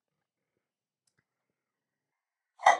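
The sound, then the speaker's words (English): After nearly three seconds of silence, a dog that needs to go out to the bathroom lets out one short, sharp noise, a quick bark or yelp that cuts off right at the end. No one is talking. “My dog is having some issues.”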